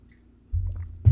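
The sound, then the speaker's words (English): Low wet gulping and slurping as someone sips a drink of water, a soft swallow followed by a louder, fuller gulp near the end, with no talking. “Let me take a sip of water before we get into all this.”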